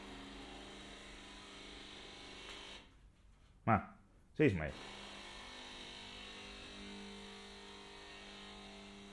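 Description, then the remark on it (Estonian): A coffee machine, refilled with water, makes coffee with a steady whirring hum and a low buzzing drone, dipping briefly before returning, as the recorder stands in the middle of the room turning in place so the sound moves; a voice says a few short words in the middle. “Kaugemale ja nüüd kui ma seisan keset tuba ja pöördun koha peal, siis te kuulete, kuidas kohvimasina hääl liigub.”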